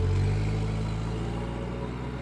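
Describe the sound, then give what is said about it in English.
A car engine runs steadily, a low rumbling hum that starts slightly louder and settles into an even idle-like drone, with no voices, as a man climbs into his car and starts driving. “Slowly, Howard climbed into his car and started driving.”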